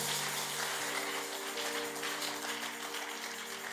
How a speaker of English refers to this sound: Once again, celebrate God with a good clap.